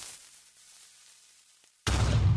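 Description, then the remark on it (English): A soft, faint video game creeper hiss fades away into near silence, then a sudden loud creeper explosion bursts in, echoing through a cave, and roars on with a rumbling, crackling blast until the end. “Well, at 143, there's the faint sound of a creeper hiss and explosion echoing through the cave.”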